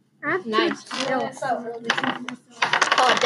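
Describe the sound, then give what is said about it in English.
Red dice are rolled for a sneak roll in a game, clattering and rattling across a hard tabletop in a couple of quick bursts, fairly loud, right after a brief stretch of someone talking. “Which means y'all need to roll the red dice.”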